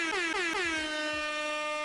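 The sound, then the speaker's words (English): A loud air horn blares in several quick stuttering bursts that merge into one long sustained blast, dense with bright harmonics, alone with no talking. “I have to do an air horn for that one because not many RPGs are doing that, right?”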